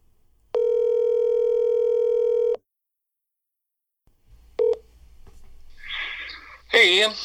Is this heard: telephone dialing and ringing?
yes